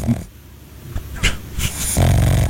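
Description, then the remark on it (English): A pug named Pugcito snores while taking a nap, its wheezy, snuffling breaths rumbling in uneven bursts with a couple of sharp snorts. “That's our pug.”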